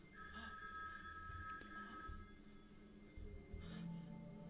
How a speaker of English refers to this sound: Pick up the phone.